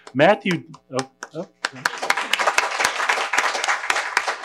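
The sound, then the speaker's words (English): A man speaks briefly, then an audience breaks into steady, dense applause, many hands clapping loudly and continuously until the end. “we may have a number of moments for applause over the course of this.”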